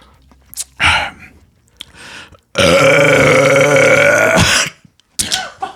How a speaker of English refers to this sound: …, you're gonna burp. Get a good burp, guy.